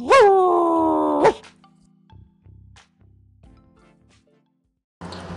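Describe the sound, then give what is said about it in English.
A person imitates a barking dog with one loud, drawn-out, yowling woof, followed by a few faint low thumps and a short noisy burst at the end. “Rough. Woof. Bow wow. It's time for more dog lyrics.”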